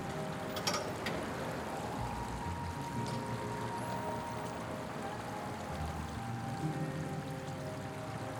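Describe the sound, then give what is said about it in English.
A small waterfall with fish in it, by an apartment complex, splashes and pours steadily, a continuous rushing trickle of water, with a faint low mechanical hum underneath and no voices. “I found like a little waterfall by an apartment complex with fish in it, and so I watched the fish swim around for a little bit.”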